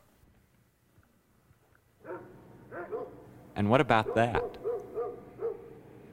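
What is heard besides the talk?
dog barking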